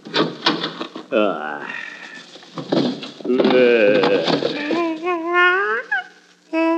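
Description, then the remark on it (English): Someone struggles to open a car door, with a few rattling clunks early on and drawn-out straining grunts and groans of effort, fairly loud, ending in a short pause. “Now, if I can just get this door open.”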